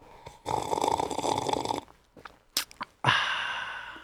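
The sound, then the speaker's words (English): A long, loud airy slurp of someone sipping warm coffee, followed by a few small mouth clicks and a swallow, then a breathy exhale. No one speaks. “So in order to ameliorate this situation, I need to take a sip of coffee.”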